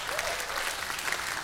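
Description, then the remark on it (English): An audience claps steadily for mothers, a dense wash of many hands applauding at a fairly even level, with a faint murmur of voices mixed in. “Can we give a big hand clap for all the moms who make us?”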